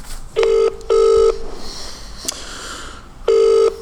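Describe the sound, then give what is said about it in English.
A telephone ringing tone over the line after a number is dialed from a phone: three steady, buzzy tone bursts, each under half a second, separated by short and then longer pauses, heard clearly with no talking. “Just be one second while I find his number in my phone. And 1, 2, 3, dial. Dial, dial, dial.”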